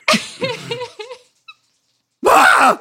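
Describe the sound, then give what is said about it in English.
A person bleats like a goat in wavering, nasal cries, a long quavering call followed after a pause by a short, loud, strained bleat. “That is kind of how goats sound.”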